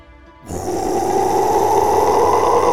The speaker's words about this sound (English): As they descended the stairs, the growling grew louder and more intense.